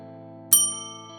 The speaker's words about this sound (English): The hanging bell outside McCarrow's pub rang again, signalling the exit of another lonely visitor who, after the usual weeknight dosage, stumbled homeward to their half-empty bed.